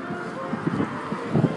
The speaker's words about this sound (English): It's getting kind of windy over here. When I'm inside, it won't be windy no more.